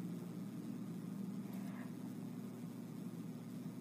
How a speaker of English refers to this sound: Okay, so she said to him, is that a plane?